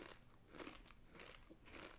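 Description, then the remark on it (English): Repeated crunching of tiny, round barbecue-flavored snacks, several bright crackly bites in an uneven rhythm over about two seconds, with no talking. “Crunchy, a little spice.”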